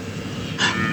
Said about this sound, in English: It's a cow. A dozen or so mamas and calves are eyeing us.